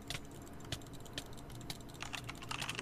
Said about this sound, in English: I could hear you clicking very fast. Except it's not that fast, it's like 12 also, CPS.